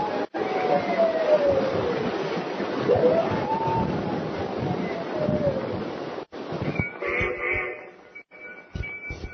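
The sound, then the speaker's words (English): A long, wavering howl rises and falls over several seconds against a steady rushing, wind-like background, followed by a few scattered clatters and a fainter tonal hum. “Funny thing about wolves and dogs, they know when something happens. Listen to that one, Paul.”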